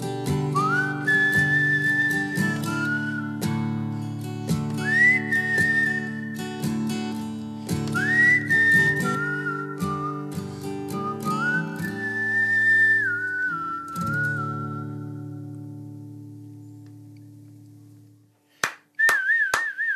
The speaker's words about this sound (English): My whistling in celebration was not nearly on the level of your whistling in that song.